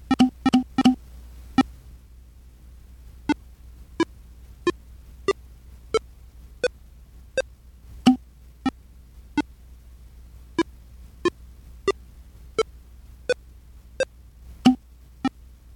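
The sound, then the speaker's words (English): A series of short, clicky beeps from a device sending files to an SD card, one per file transfer: a quick cluster of four at the start, then a steady run of evenly spaced blips about every three-quarters of a second, with no talking. “And if you'll notice as you're listening there, you're hearing each file separately as it's being transferred.”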